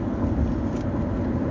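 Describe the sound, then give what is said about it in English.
A steady, low rumbling drone of a car engine while driving, heard from inside the vehicle, continuous and even with no talking over it. “I'm driving in my car, and you'll hear the engine noise.”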